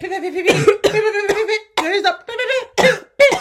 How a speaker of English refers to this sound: You see, I'm having a coughing fit because I'm dying. The thought of it.